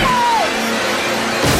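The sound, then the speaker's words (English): An axe chops through a wooden door in a Mountain Dew Zero Sugar commercial recreating The Shining with Bryan Cranston: a loud, dense wash of noise ends in a single heavy thwack. A short falling whine sounds near the start. “Chopping the door.”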